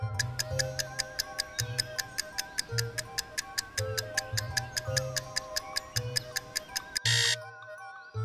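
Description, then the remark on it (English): A seven-second countdown clock ticks quickly and steadily over a low, pulsing electronic drone, then cuts off in a short burst of harsh noise near the end. “7 seconds. Tick-tock.”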